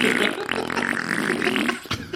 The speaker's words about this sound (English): Let's check the fart forecast.